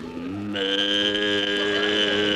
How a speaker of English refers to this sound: Easy, Bossy, easy. Where's that cow?